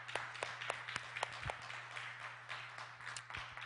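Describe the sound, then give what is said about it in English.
An audience claps for a man in a sustained burst of applause, many overlapping sharp claps forming a steady, moderately loud patter over a low electrical hum, with no one speaking. “Give him a hand clap.”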